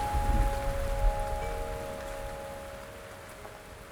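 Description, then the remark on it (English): Steady rain patters on a hard surface in a dense, even hiss, with a low sustained hum underneath. The shower starts slightly louder and gradually softens over a few seconds. “And I'm just going to see the sunshine, even though it's raining.”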